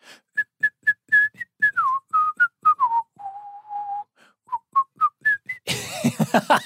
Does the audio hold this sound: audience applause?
no